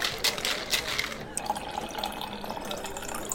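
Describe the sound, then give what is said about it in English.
A drink is poured into a glass, a steady liquid splash with bright fizzy hiss that shifts in pitch as the glass fills, heard alone without talking. “Hey, what can I get you? I'd like a topic. Any special way? Make it a top shelf topic. Coming up.”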